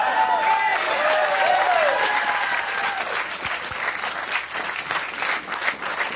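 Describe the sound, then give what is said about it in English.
Steady applause from a live show audience, loud and sustained, with a few whoops and cheers rising over the dense clapping before it thins slightly toward the end. “Why are you clapping?”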